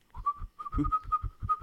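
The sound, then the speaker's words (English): Someone whistles while breathing in: a steady, mid-pitched tone that wavers slightly, riding over a quick run of rhythmic, breathy puffs. It is fairly quiet, with no talking. “But I can whistle breathing out or breathing in.”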